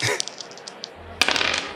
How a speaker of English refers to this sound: You're rolling, under bear, so that, which is a 2, but you get to roll 2 dice.